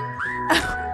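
A short whistle sound effect: a single sliding tone rising then holding, followed by a brief breathy burst, alone with no talking.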